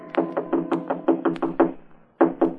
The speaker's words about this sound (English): It was almost 3 a.m. when Andy knocked on my apartment door.